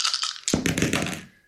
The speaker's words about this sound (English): Here we go. Dice.